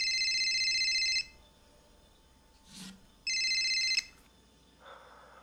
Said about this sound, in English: That's not my regular ring. That's not my regular phone. That's the burner.